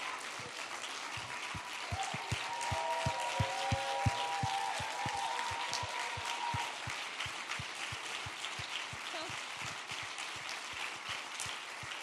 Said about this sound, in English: Guys, can we all give all of these women a round of applause? Yes.